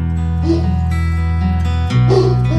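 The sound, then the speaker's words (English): A dog barks and yips a few times, with whining in between, heard over steady background music with no one talking. “My dog's decided to end the show.”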